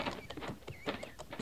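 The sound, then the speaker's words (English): Pony hooves clip-clopping in a steady, unhurried rhythm, a string of distinct knocking steps at moderate volume with faint background noise and no clear talking. “Slide off that pony.”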